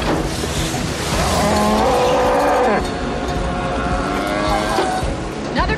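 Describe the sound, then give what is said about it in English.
A cow gives a long, drawn-out moo, followed by a second lower call, nearly swallowed by a constant roar of howling storm wind that fills the whole recording. “We got cows.”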